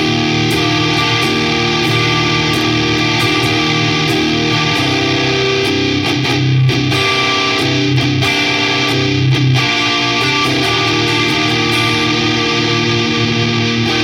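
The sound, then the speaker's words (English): A heavily fuzzed electric guitar through two stacked fuzz pedals, the Muffaletta and the Civil War, playing thick, saturated sustained chords with a buzzy, compressed texture that stays loud and dense throughout, with no talking. “But this is why. Because when you stack both of them, it sounds like this.”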